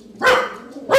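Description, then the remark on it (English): Two loud barks from a dog, separated by a short pause, each a sharp harmonic burst with no speech around them. “The dogs were just chiming in a little bit.”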